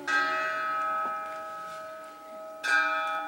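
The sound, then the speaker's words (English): A deep bell tolls twice in a scene from Shakespeare's Macbeth, each strike ringing out with long, shimmering overtones that linger and fade between the slow, measured strokes. “The bell invites me. Hear it not, Duncan, for it is a knell that summons thee to heaven or to hell.”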